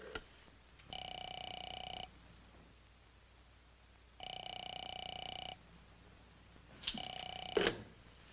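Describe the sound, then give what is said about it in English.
A telephone call to a professor's home rings unanswered, three long steady bursts separated by pauses, the last one cut short, and no one speaks. “I called the professor. No one's there. No one answered the phone.”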